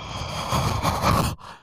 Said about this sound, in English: Okay, he's mouth breathing now. We gotta go.